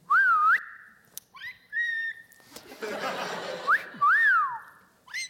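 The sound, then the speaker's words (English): A young boy whistles in several short, wavering bursts, the pitch sliding up and down, with a breathy, rushing sound and a faint chuckle between the whistles. “His whistle, it's not like, let me just show you.”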